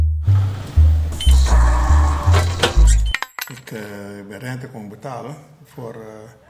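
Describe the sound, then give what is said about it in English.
Automatic sliding doors at the Belmer pawnshop rumble and clunk for about three seconds, a loud mechanical hum with repeated low thuds and rattling, before a person starts talking over quieter background noise. “We're back in the Belmer, behind the automatic sliding doors, that you can hear closing and opening the whole time.”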